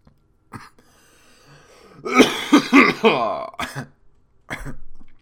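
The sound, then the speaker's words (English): A person coughs and clears their throat in a series of rough, raspy bursts, with a few sharp hacks spaced out toward the end and no talking. “It's like I didn't listen to a podcast for somebody to cough for fucking 2 minutes.”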